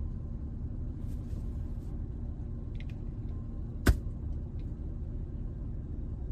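A steady, low engine rumble fills the inside of a car throughout, fairly quiet and even, broken once midway by a single sharp click or knock.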